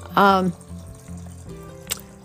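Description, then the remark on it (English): Water pours into a small water bottle in a brief burst, its gurgling tone rising as it fills, then fades into quiet with a faint clink near the end. “I am pouring water for him in his little water bottle here.”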